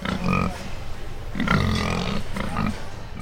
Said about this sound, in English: So when we come to these shows, we class our pigs when we show them by weight. And so behind me is a scale, and I'm weighing my pig.